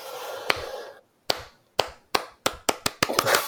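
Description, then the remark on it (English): After a burst of hiss, a slow clap begins with sharp, widely spaced hand claps that steadily speed up into quicker, denser clapping, with no voices. “I'll take a slow clap.”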